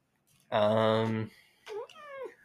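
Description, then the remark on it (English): A cat lets out a loud, drawn-out yowl, then two shorter meows that slide downward in pitch, with no one talking over them. “Sorry, our cats are just kind of getting used to everything and moving around.”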